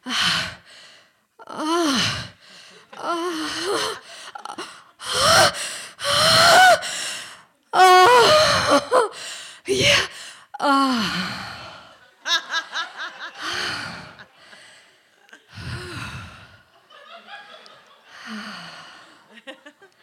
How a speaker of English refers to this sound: This was going to be a lunchtime baby-making endeavor with lots of excitable breathing.